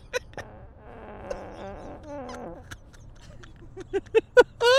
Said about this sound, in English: You know, I have to fart dude, again.